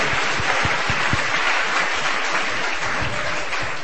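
A crowd applauds steadily after a reading, many hands clapping at once in a dense, continuous wash of noise that holds at an even, fairly loud level throughout, with no voices standing out.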